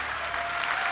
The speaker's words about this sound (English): So, somebody give the Lord a clap offering.